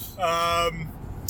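A steady, low rumble of a car cabin on the move fills the background, with a short burst of voice rising briefly over it near the start.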